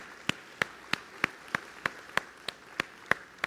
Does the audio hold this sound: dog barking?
no